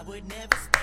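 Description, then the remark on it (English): Two slow, sharp hand claps, clapped ironically, spaced about a quarter second apart, crisp and moderately loud, following a brief murmur of voice at the start. “It was ironic clapping.”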